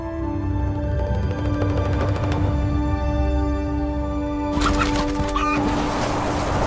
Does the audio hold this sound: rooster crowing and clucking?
yes